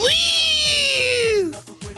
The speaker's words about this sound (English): That's where you put the blade of grass. You hold the blade of grass between those two parts, and between that little gap, that's where you whistle, and you whistle, and the grass goes.